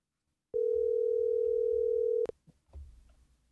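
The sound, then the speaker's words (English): A loud, steady telephone dial tone hums at one pitch for nearly two seconds while a call is being placed to get someone on the phone, then cuts off with a click, followed by faint low rumbling and handling noise. “So we're trying to get her on the phone right now.”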